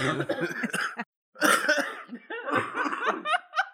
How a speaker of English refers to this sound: Cough. I didn't plan that. No, that's natural.